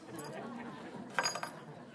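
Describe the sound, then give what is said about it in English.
Metal dog tags clank against a microphone during a church service sermon in two or three sharp, bright clinks near the middle, over a steady murmur of indistinct voices. “And he says my dog tags are clanking on the microphone.”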